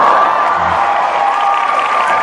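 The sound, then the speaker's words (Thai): A crowd cheers and claps in a steady, dense roar that holds at an even, loud level throughout, with a thin high whistle-like tone running through it. “ขอบคุณทุกคนเลยนะครับขอบคุณทุกคนที่ร่วมเชียร์ด้วยกันนะครับ”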